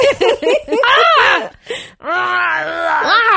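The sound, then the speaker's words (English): A person lets out loud, drawn-out screams with wavering, groan-like pitch, two main sustained cries after a few short choppy bursts, prominent with no other sounds. “Yeah, I'm screaming and they're like, now crap.”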